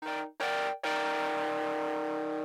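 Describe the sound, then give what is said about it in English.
A loud, gritty keyboard chord recorded with heavy distortion, the same chord the guitars play, struck twice in quick short stabs and then held and sustained, dry with a buzzy, saturated edge. “This is the dry keyboard sound, and for this I used a lot of distortion going in, so I just tracked with it, and it just plays the same chord that the guitars are playing.”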